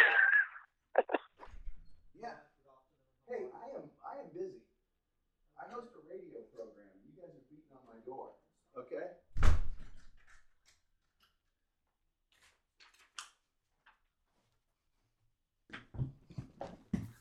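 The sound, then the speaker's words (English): Faint shuffling steps and muffled, indistinct voices give way to a single loud thud of a door, then a few quiet clicks and a rustle, as two men going door to door selling electric service come to a home's door in Dallas. “Somebody came to my door.”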